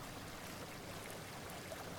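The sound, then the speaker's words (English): A steady, continuous rush of falling water from Gambler's Fall, a little network of waterfalls, fairly faint and unbroken throughout, with no voices. “Steel steps forward into this waterfall, and Illyria continues wide-eyed to follow.”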